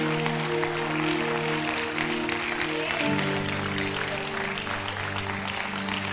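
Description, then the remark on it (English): A crowd claps for Jesus after a prayer, steadily in a dense, continuous patter for several seconds, over sustained organ-like chords that shift to a new pitch midway through. “Clap for Jesus.”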